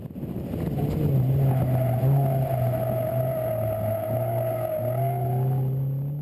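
An autocross race car is driven hard on a timed run through the course in the Okanagan, its engine holding a steady, loud drone with slight pitch shifts as it accelerates and eases off. No one speaks.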